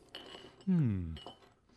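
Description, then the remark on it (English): Two light clinks of glass ring out with a short high ring, and a brief voiced murmur sounds between them as a glass of water is set down. “Might I trouble you for a glass of water?”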